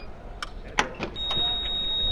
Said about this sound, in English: Okay, so there you go. You heard a bit of beeping going on there. That was the bike being released from the rack.